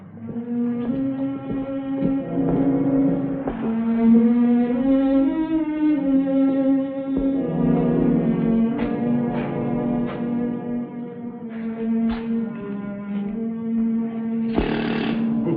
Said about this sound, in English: Compressor's still on.